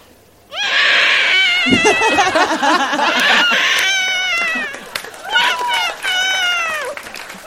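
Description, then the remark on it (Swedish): A person imitates a screaming infant with loud, sustained, wavering high-pitched wails, breaking into several rising and falling cries over about seven seconds. “Men jag kan skrika som ett spädbarn.”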